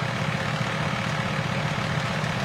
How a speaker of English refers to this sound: For some reason, they don't like the fact this individual has put his vehicle in Appanag Cove. Here comes a huge tow truck. Don't look now.